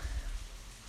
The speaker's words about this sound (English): You're probably able to hear the rain.